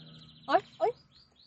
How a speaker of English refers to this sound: Look, even the birds are singing for you guys.